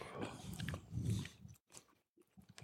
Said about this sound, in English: The only problem there is that, obviously, as you start chewing, saliva stimulation gets created, so you have to, this is like a little bit more.